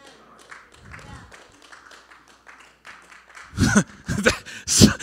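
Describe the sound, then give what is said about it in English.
Scattered, half-hearted clapping from an audience breaks out near the end in a few loud, uneven bursts, following a stretch of quiet, low speech. “There was some half-hearted clapping there.”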